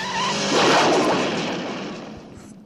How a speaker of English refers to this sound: Okay, so we've just seen, a bad guy driving off the edge of a cliff on a motorbike. One bad guy or two bad guys? Probably James Bond rammed the guy off the edge of the cliff and he's falling to his death.